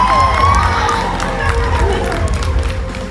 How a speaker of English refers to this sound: How about a huge round of applause for the …, everybody?